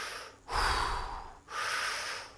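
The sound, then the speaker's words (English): A voice imitates a man's heavy breathing as he holds a cable and looks at the water: two long, forceful, airy breaths in a steady rhythm, fairly loud, with no talking. “And then all of a sudden, he just turns around, holding on that cable, looks at the water, and starts doing this heavy breathing.”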